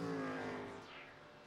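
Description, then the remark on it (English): The loud racing engine of the DragonSpeed number 81 race car roars past, its high harmonic whine sliding downward as the car moves away, with no voices present. “As in comes the Dragon Speed number 81 car.”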